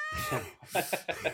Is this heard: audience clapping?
no